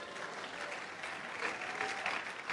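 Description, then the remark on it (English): An audience claps at a corporate communion service of the Citadel Global Community Church. The clapping is a steady, moderate patter of many hands, fairly even in loudness throughout, with no single standout claps and no voices over it. “Oh, that's a poor clap offering to the Lord.”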